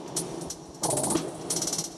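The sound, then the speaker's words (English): A synth pad pumps and breathes under sidechain compression on a Disting Mark IV, with a Maths output patched into its sidechain input. Its level ducks and swells back in a steady rhythm, with bright noisy bursts riding each surge. No one speaks. “So you can hear that kind of breathing thing that's going on.”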